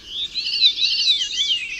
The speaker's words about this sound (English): It's just a little bird. Small bird, and you'll see a short video behind me of what is known as the veery thrush bird.